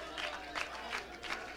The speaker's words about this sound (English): Let's clap our hands in Jesus' name with all of our hearts.